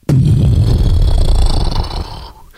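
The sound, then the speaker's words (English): A beatboxer imitates an explosion with the mouth: a sudden loud, rumbling burst of low, gritty throat noise with hissy high texture, sustained for about two seconds before tapering off into quiet. “Or an explosion.”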